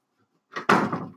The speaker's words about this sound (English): You might as well just leave right now. Insert door closing sound effect.